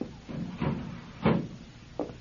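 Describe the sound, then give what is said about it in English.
Sliding glass doors to a balcony rumble open in a few rough, scraping pushes, with a louder grinding surge midway and a short knock as they stop. Fairly quiet, no voices. “Let me get these sliding glass doors.”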